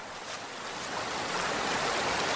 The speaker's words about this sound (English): The waterfalls are a really pretty spot. I can see why people would want to come out this way.